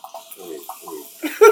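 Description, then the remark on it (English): A drink being poured into a glass: a short run of gurgling glugs that ends in a brighter, louder splash as the liquid fills. No one speaks. “Wait till my drink gets to pour. Let my drink pour before I tell the story.”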